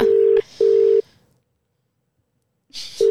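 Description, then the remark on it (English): A phone call to a year 12 student rings out with two steady electronic tones separated by a short gap, then a pause before a third ring begins, clear with no one talking. “All right, let's give them a call. Who are we ringing?”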